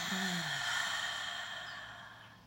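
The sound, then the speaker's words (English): A single slow, deep exhale during a guided breathing exercise, breathy, starting with a soft voiced sigh and gradually fading over a couple of seconds with no talking. “And release.”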